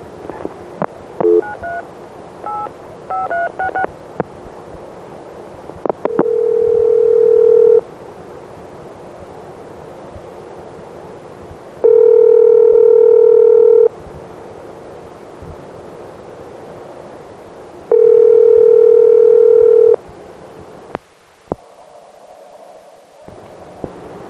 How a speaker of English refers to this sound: one very important ringing tone I forgot to put on here is ESS, Electronic Switching System, and here's one for you now.